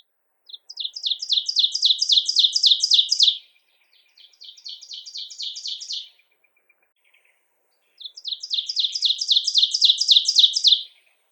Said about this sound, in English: They're easy to tame and handle and are the source of the teacher, teacher, teacher song that we often hear in summer and spring in the Algonquin Park area. Here's an example.